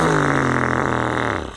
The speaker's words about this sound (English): let out another big stinky fart. Ew! That's really stinky.